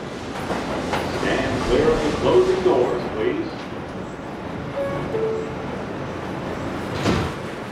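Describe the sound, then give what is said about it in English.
A subway train rumbles steadily along, a dense low roar with faint squeals and indistinct murmuring voices mixed in, and a brief louder screech near the end. “So I head into the subway and set off to see”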